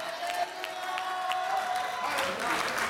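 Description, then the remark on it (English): A church audience claps steadily throughout a sermon, a dense wash of hands with scattered shouts of hallelujah and cheering voices mixed in, fairly loud, swelling slightly toward the end. “Yeah, it's a good place to clap and shout hallelujah.”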